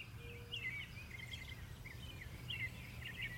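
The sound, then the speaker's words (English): Several songbirds chirp and trill in a holly oak tree outside a bedroom window, their overlapping calls running throughout, fairly faint over a steady low background rumble. No one speaks. “It was a symphony of sounds that was captivatingly beautiful and intimate, an amalgamation of conversations that I would never truly understand.”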